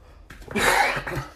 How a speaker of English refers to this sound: It wouldn't be an episode if I didn't cough. You all know that by now.